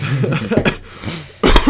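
A couple of harsh coughs: a short one early on, then a louder, sharper burst at the end, with quieter breathy noise in between.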